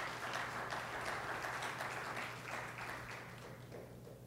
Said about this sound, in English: Can you give him a hand clap this morning?